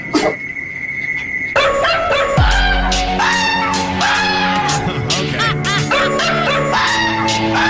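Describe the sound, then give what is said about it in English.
A man's recordings of his own dog's barks and yips are edited into a loud song mashup, the clipped barks pitched and sequenced like a melody over a steady beat and bass. “He got sounds of his dog and put … with his dog barking.”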